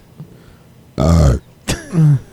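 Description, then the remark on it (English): Two loud burps in quick succession, the first a deep, rumbling belch and the second a shorter one with a sharp onset, with quiet in between and no talking. “Burps.”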